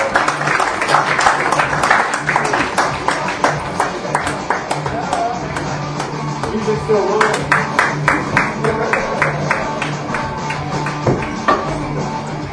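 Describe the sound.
An audience bursts into steady applause, dense overlapping claps running for about twelve seconds at fairly even loudness, with a few voices cheering faintly underneath.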